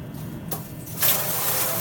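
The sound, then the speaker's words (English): Water splashes onto hot sauna rocks, setting off a sudden, loud, bright hiss of steam that swells and keeps sizzling steadily to the end, with no voices. “can you put a little bit of water on the rocks?”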